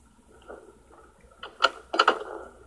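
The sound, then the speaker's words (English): Sharp clicks and rattles of a small pepper spray canister being handled, coming in two quick bursts after some faint fumbling, with no one speaking. “What's that? Pepper spray. Just in case.”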